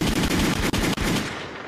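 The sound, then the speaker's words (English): A rapid burst of gunfire sound effect, loud, with shots firing in quick succession for a second and a half before tapering slightly. No one speaks. “Give him fucking gunshots for number that.”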